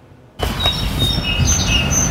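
Birds chirping outdoors at a campsite in a Canadian city, with several short, high whistled calls scattered over a steady background hum of ambient noise. A brief near-silence comes first.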